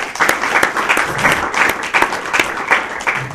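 An audience claps steadily with dense, overlapping applause, lots of sharp hand claps blending into a continuous patter at a fairly loud, even level, with no talking over it.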